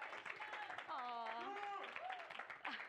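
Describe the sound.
Steady crowd applause fills the whole clip, a dense wash of clapping at an even level, with a voice or two rising above it briefly partway through.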